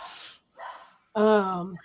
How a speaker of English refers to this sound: My dogs are freaking out. You can hear yours is too.